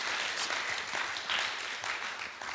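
An audience applauds itself steadily, a dense, crackling wash of many hands clapping at once that holds at an even level throughout, with no voices heard over it.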